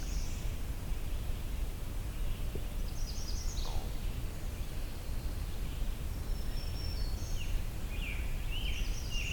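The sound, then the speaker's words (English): A magnolia warbler sings short, high, sweet phrases, repeated about three times, fairly faint against a steady background hiss of outdoor noise. “This is a magnolia warbler. Just that wee wee wee wee wee.”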